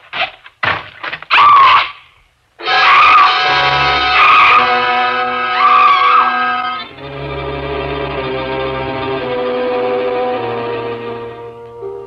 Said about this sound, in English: Screaming finally. Felt better for it.